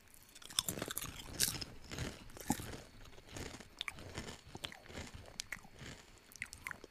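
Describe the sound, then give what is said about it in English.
Repeated crisp crunching of potato chips being bitten and chewed, a steady series of sharp, crackly bursts with no talking over them. “Tastes like a really nice chip. I could see, like, maybe. I don't. I taste potato chip.”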